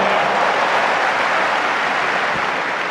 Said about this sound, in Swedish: Men också vi tar en Wimbledon-applåd på det.